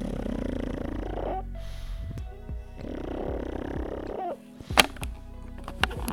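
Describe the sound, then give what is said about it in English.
A dog makes loud, low rattling snorts, like heavy snoring breaths in two long cycles with a pause between, followed by a few sharp clicks and softer sounds; no one speaks. “Oh, my dog's really going for it now. Listen to this.”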